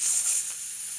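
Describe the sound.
A voice mimics a snake with a steady, airy hiss lasting about a second, even, easing slightly toward the end with no talking.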